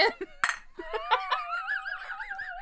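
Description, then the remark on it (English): A couple of bright glass clinks ring out, as in a toast, followed by a drawn-out, wavering vocal sound, like laughing or humming voices. “Let's cheers to that. Cheers.”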